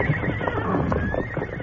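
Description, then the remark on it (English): A horse, one of four hitched behind a town bank, whinnies in one drawn-out, wavering call that slides downward in pitch, fairly loud over a busy background of rustling and shuffling. “Then Doc noticed the four horses, round hitched behind the bank.”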